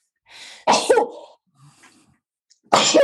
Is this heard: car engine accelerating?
no